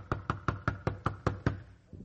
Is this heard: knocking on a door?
yes